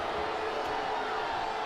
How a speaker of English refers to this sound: Oh, off of BYU for a Seminole throw. The crowd disagrees with the call.